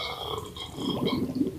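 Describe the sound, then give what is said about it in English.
A stomach gurgles and bubbles from indigestion: a string of low, irregular burbling pops that grows louder and busier in the second half, with no one speaking. “Did you hear that bubbling there? That is not normal.”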